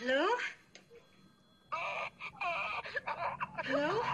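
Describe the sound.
In a movie, a voice moans and wails in drawn-out, wavering cries that slide up and down in pitch, broken by a brief quieter lull before the anguished sounds return.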